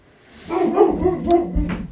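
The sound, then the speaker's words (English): A dog barks in a quick series of loud yaps and woofs over about a second and a half, with no one speaking. “I hear George. Yeah, the guy who picks up the dog poop is here.”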